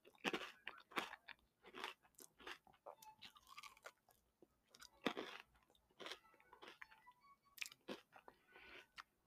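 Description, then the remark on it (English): Crisp crunching as hard food is bitten and chewed, with repeated sharp crackly bursts in an irregular rhythm and brief quiet gaps between bites, including one big crunch as a whole chunk breaks off. “Did you hear that big crunch there? A whole piece, a whole chunk fell off.”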